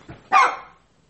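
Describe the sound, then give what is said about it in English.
A single sharp dog bark rings out, loud and abrupt, as someone is at the door, with a faint lower sound just before it and a quick fade afterward. “Somebody's at my door and the dog is barking.”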